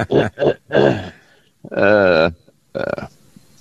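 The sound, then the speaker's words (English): A string of short, voiced hiccups, three quick ones, then a longer wavering groan-like sound, followed by one more abrupt hiccup, with brief silences between and no speech. “I got the hiccups. Hang on a second.”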